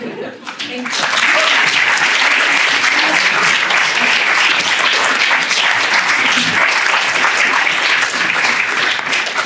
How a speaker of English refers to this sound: Can we get another round of applause, please, for our three speakers?